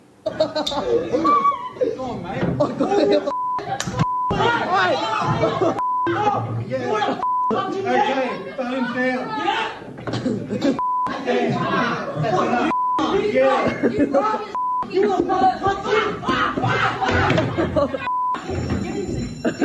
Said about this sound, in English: Now, all those beeps you heard were foul language, students and teacher.